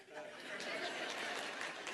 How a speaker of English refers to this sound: But now, let me tell you something. I ought to got a clap for that.